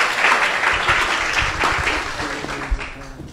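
An audience applauds to welcome a speaker, many hands clapping steadily in a dense, continuous wash that stays fairly loud before gradually thinning out toward the end, with faint voices underneath.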